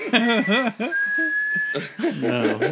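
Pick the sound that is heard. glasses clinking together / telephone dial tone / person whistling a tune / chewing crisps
person whistling a tune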